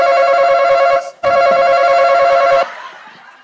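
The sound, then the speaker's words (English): A loud, harsh electric buzzer sounds in two long blasts separated by a brief gap, its steady harmonic drone cutting off abruptly and leaving a faint trailing hum. “That shit scared the fuck out of me because they cut our buzzer off 2 weeks ago.”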